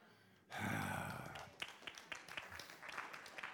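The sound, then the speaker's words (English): A crowd breaks into sudden applause that swells loudly, then settles into a scattered patter of individual claps with a few murmurs mixed in. “I'm not sure if you're clapping for that or because of the person sitting next to you, but I'm just playing.”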